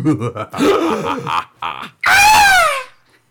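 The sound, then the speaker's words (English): Short grunting vocal noises, then a man attempts a loud, strained high-pitched scream that slides downward in pitch and breaks off after about a second. “Sorry. I can't girl scream.”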